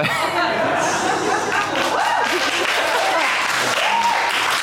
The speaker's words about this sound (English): I've never had a cheer for being fat before.